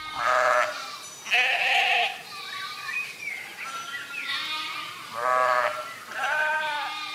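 Several sheep bleat in overlapping, wavering calls from a flock being herded with cows in search of pasture during a long drought in Musoni Village, Kajiado County, Kenya; loud bursts repeat every second or two with fainter bleats in between, no talking.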